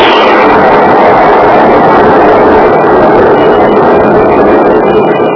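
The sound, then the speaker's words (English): A ship's engines roar loudly and continuously alongside a dense, churning crash of noise as the boat hits something at night while moving up the coast, holding steady throughout, overwhelming, with no voices. “In the instant that the boat hit, the beacon snuffed out and reappeared a moment later.”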